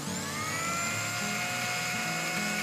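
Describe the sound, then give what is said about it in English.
A blender whirs steadily through two soups with stem celery and tea added, a loud, continuous motor whine with a high, slightly wavering pitch and a churning low rumble underneath, with no talking. “All right, I'm putting both soups into the blender. I'll add the stem celery and the Amnes tea, and I will blend them all together.”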